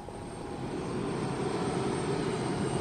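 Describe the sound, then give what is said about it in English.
A steady, heavy engine drone from a Russian plane flying toward the North Pole fills the whole stretch, a continuous low rumble with a broad roar on top, holding an even loudness throughout with no voices. “I'm getting ready to get on a Russian plane headed for the North Pole.”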